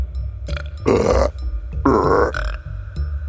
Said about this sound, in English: So I hovered my finger over that spot. All of a sudden, she starts burping.